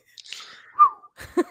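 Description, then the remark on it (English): A person whistles along with the end of a theme tune, a brief melodic phrase that glides downward, moderately loud, followed by a short burst of voiced sound at the end. “Is that I always do the whistle along with at the end of it.”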